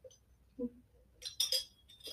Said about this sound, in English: Sorry, coffee sip.